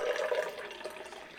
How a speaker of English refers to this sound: What's that? Soundbite or you pour something? Someone's taking a piss. Jesus Christ.